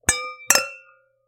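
wine glasses clinking

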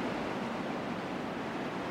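ocean waves washing ashore

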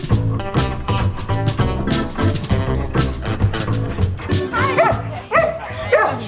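dog barking and yipping

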